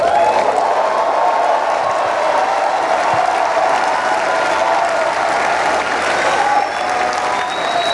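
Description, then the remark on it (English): An audience at a church service bursts into loud, sustained applause and cheering in praise of God, a dense wash of clapping with scattered shouts and whoops that stays steady for the full eight seconds. “Those of you who know that God is about to bless you like you've never been blessed before, I want you to give him the highest praise that you can muster.”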